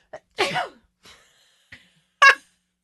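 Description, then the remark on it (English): A loud sneeze bursts out, preceded by short sharp inhalations and a brief breathy catch, with a second forceful sneeze-like burst near the end. “That was a sneeze, guys.”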